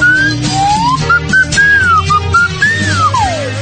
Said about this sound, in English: Still my slide whistle gently weeps.